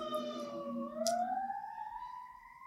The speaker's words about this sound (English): Oh, there's a siren in the background letting you know. Nothing ever dies.